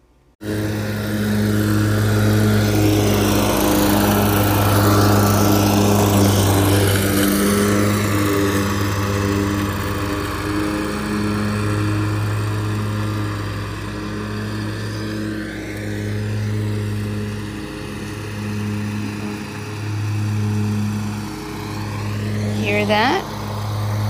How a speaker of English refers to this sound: Luke on the riding lawnmower.